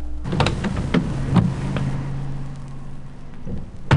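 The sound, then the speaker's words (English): A car idles with a low steady hum while a door clicks open and several clunks and shuffles follow as an adult climbs out, ending with a solid door thud. “And the grown-up get out.”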